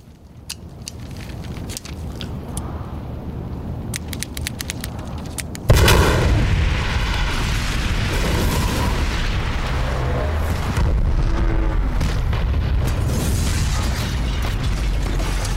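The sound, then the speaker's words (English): A hospital building explosion, done with practical effects rather than computer generation, in Christopher Nolan's film The Dark Knight: a low rumble with scattered sharp pops, then a sudden huge blast that keeps roaring loudly, thick with crackling debris, to the end. No one speaks. “Now again, both the truck flip and this hospital explosion were done using practical effects, not computer generated at all.”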